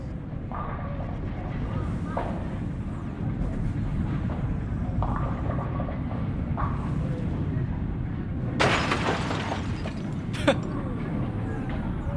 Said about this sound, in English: And the last thing I need to explain to you, the last thing that really happens in this clip, is that Carl, who is frozen, of course, falls over and shatters, and the old Aqua Teens will talk about it.